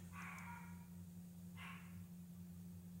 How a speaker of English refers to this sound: And there goes my dog.